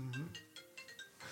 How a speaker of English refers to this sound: Time to wake up. The podcast is going on and your phone's ringing.